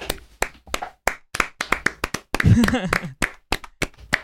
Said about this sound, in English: Well, real quick, can we get a clap going?